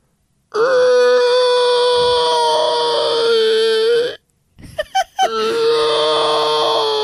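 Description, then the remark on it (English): A person vocally imitates the roar of the baby T-Rex from Jurassic World: a loud, sustained, strained screech held for several seconds, broken by a few short gasping bursts, then resumed at the same raspy pitch. “Well, I can do a really good baby T-Rex from Jurassic World.”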